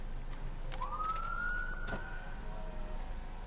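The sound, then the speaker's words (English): A police siren from a cop's rancher-style pickup truck wails once, rising in pitch and holding steady before fading, over a constant rumble of road and traffic noise. No one speaks. “Dude, is that like a fucking rancher truck that's a cop?”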